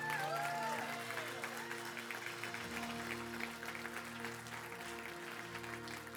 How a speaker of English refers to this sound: If everybody could just stand with me. Can you give God just a hand clap of praise this morning for his word?